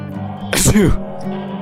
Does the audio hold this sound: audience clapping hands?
no